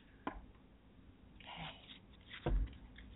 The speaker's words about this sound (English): I'm just shuffling the cards. And this one's popping right out.